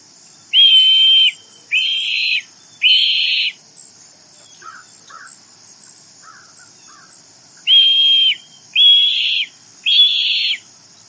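Two sets of three short, loud, harsh shrieks from a red-tailed hawk, evenly spaced, separated by a few seconds of faint chirps over a steady high background hiss. No one speaks.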